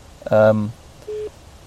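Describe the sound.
A phone rings with an incoming call from London, a short electronic tone, one brief steady beep heard clear, just after a brief voiced sound.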